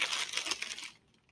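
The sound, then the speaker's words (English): Packaging paper is pulled out of an opened box with a burst of busy crinkling and rustling that lasts about a second, then drops away to near silence. “And the box is ready to open. All right, packaging paper.”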